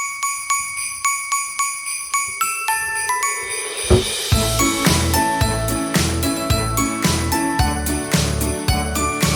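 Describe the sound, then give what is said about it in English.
Bright, tinkling bell tones ring out in a quick, steady pattern, and about halfway through a bouncy, thumping bass line joins to form the cheerful Christmas tune Jingle Bells. No one speaks. “Jingle bells.”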